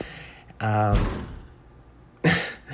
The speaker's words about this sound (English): People slamming things behind me.